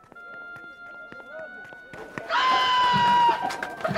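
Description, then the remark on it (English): Donkey hooves clip-clop on a hard floor as a donkey is brought into a temple, in a quick, uneven series of sharp knocks, before a louder wash of bustling noise and voices swells up and covers them. “You can bring the donkey in the temple with you.”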